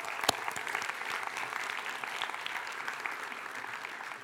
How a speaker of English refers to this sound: So I just want to give them a round of applause.